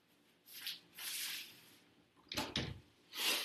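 A door is unlocked and pushed open: soft scraping and swishing movements, then a sharp clack of the latch with a low thump, followed by another brushing sweep. Fairly quiet, with no talking.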